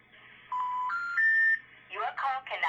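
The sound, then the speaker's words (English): Three steady electronic keypad tones sound in quick succession, each a little higher in pitch, as a phone number is dialed to call someone; then a voice begins talking right after. “So we're calling him right now.”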